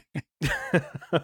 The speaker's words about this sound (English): Cough, cough.